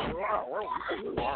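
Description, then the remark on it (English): A man's voice imitates a dog barking, a run of short, wavering woofs and yips lasting just over a second, with a voiced, speech-like quality. “Right, so I wouldn't want my daughter staying over somebody's house, and then all of a sudden, they hear the dog.”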